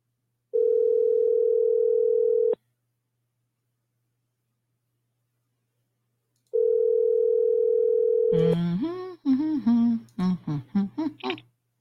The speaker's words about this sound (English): Let's place a little phone call, and then I'll tell y'all why.